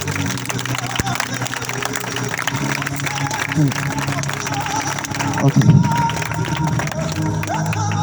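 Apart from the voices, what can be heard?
audience clapping hands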